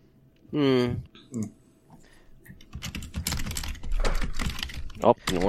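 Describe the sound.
Rapid, steady clatter of typing a message into a private chat on a computer keyboard, fairly loud, starting partway through and continuing to the end, with brief voice sounds before and during it.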